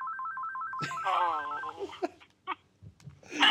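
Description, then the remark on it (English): A phone's electronic ringtone trills for an incoming call in rapid alternating beeps for under a second, then cuts off as a voice sounds briefly, followed by a few soft clicks and thumps. “Somebody's calling our phone here”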